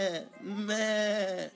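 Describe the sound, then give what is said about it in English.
A person imitates a goat's bleat with a nasal, wavering 'meh' voice: a brief opening cry, then a longer, steady quavering bleat, moderately loud. “She kind of sounds like one of those goats.”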